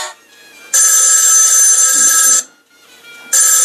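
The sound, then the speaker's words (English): A loud telephone bell rings in a long shrill burst, pauses briefly, then starts ringing again, with no voices over it. “Excuse me one second, I gotta answer that.”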